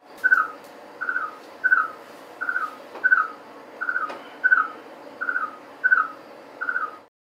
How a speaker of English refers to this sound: Well, that's just a musical delight. Right? He's such a good little frog. I don't know why he was so shy. He should sing to us more.